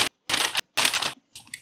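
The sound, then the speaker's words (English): Crinkly plastic rustling, like a snack bag being handled, in three or four short bursts separated by brief pauses. It is fairly loud, with no voices. “You're gonna be rustling that damn bag. You better mute that shit.”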